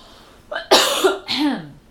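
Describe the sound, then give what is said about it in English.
A loud cough in two bursts: a sharp explosive hack followed quickly by a second, rougher cough with a throaty, descending tail, with no speech around it. “Hold on, I'm going to cough.”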